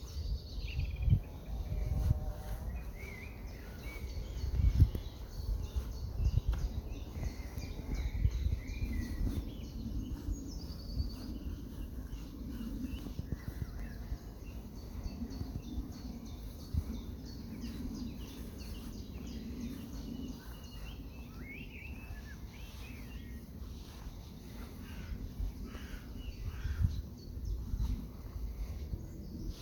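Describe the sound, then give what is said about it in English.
Birds sing faintly over a soft hum of insects, with a low rumble of wind and outdoor ambience running steadily throughout. “So that might be bird song, the wind through the trees, buzz of the bees.”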